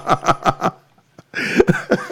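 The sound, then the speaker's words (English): A quick run of four sharp coughs, then a short pause and a longer, rougher coughing fit with some strained vocal sound mixed in. “I'm still getting over this cough.”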